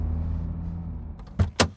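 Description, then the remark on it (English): A car engine idles with a low rumble, then cuts out, followed by two sharp clunks of a car door opening and shutting as the driver gets out after driving to a mask store. No one speaks. “As you emerge from your car, and you know, there's just more sort of partying going on in the streets.”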